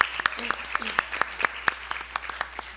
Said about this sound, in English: Before we begin, I just want us to all give a round of applause to LEAD